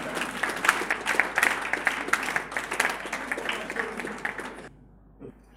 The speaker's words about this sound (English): Clap for this wise man.